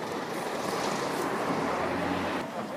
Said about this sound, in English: You can tell me again when this big Tufnell's Parcel Express lorry has passed by, because it's a bit noisy.